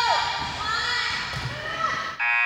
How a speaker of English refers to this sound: That buzzer mean it's halftime. That buzzer mean at halftime. That buzzer mean at halftime.